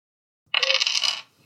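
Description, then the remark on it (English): Dice for a drive check in a game clatter and rattle across a hard tabletop for well under a second, a bright burst of tumbling clicks that settles quickly into silence. “No, it was such a bad idea that the dice didn't even want to cooperate.”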